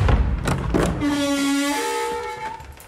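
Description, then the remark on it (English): A heavy old door upstairs in a dark old house opens: a few knocks and rattles at first, then a long, loud, whistling hinge creak that holds steady before shifting pitch and fading out. “Let's get this door open.”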